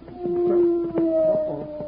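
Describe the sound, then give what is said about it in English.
A wolf howls from just over a hill in one long, steady, mournful tone that wavers slightly in pitch, fairly loud, with no voices around it. “Let's go find that wolf.”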